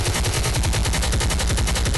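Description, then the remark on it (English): A helicopter sound effect: a loud, steady, rapid thudding of rotor-like pulses with a dense rushing roar over it, continuing evenly for two seconds with no voices. “Hit the chopper.”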